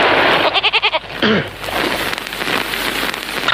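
A sheep bleats in a loud, wavering, tremolo call, followed by a shorter second bleat, with a steady hiss like rain pattering underneath throughout.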